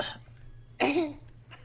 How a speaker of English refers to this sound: I cough like right at that point, actually. Like as soon as we got off, I coughed really loudly. So perfect. Look for that. There will be a massive spike somewhere.